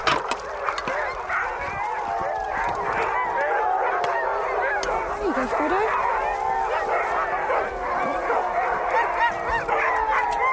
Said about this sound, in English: As the dinner is made, the teams of dogs start calling to each other.